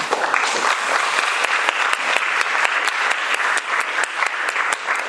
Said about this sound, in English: So, with that, was a quick round of applause.